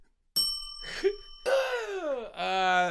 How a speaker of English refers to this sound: Okay, we'll hit the bell then.